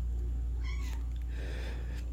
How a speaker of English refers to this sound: You hear a cat meowing in the background? You hear a cat outside the office door, yes. What cat? Which cat, may I ask? Do you know? That would be Finnegan. He's very needy. He needs attention.